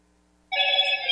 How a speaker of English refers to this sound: And every time a phone would go off when he was teaching, he'd say, the Holy Spirit is speaking.